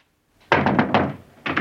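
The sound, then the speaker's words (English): Knocking on a door: a quick run of four solid raps, a short pause, then two more, loud with no one talking. “We're waiting for the knock.”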